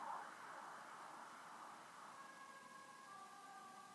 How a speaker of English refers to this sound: I don't know if you heard that ambulance, but it was pretty ironic that it came right now, when I was talking about it.